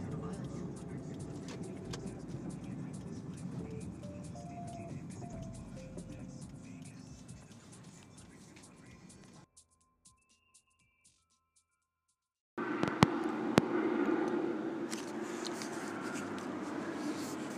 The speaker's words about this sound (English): Helicopter went through here. It got pretty close. I had a premonition it was going to swoop back around. I wanted to capture it the best way I could.